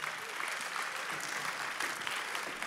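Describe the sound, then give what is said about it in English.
An audience claps steadily for a team, a dense, continuous wash of many hands at an even loudness throughout, with no voices standing out. “Let's give this team a big shout of applause.”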